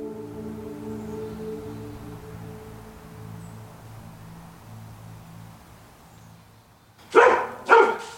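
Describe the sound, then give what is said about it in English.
Two sharp, loud dog barks in quick succession near the end, following several seconds of a low steady hum with faint background sound. “the dog are getting restless.”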